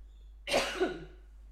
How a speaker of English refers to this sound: Sorry, I'm just going to clear my throat.